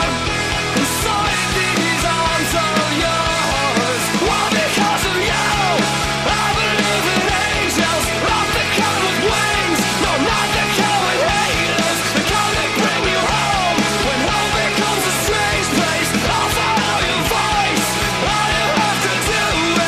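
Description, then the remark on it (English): A loud, dense rock song plays throughout at full volume, with driving bass and drums under a strained, shouted lead vocal that stays prominent over the band. “Of course, I guess their MO in that song is shouting it out, so whatevs.”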